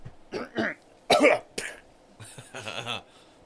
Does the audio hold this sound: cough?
yes